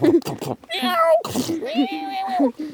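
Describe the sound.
A cat meows twice in drawn-out, rising-and-falling cries, fairly loud, with short scuffling bursts of noise at the start and between the two calls.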